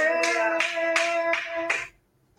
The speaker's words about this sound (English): Clap your hands.